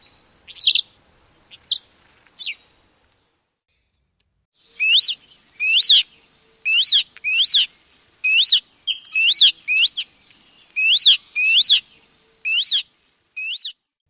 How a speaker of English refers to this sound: Audio recordings in today's episode are from The Cornell Guide to Bird Sounds, the collection found on Audubon.org